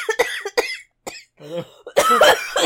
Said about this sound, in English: Oh my god. She's choking on the money and coughing into the microphone for some reason.